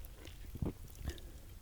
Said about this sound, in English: takes a sip of his beer. It's 10 a.m.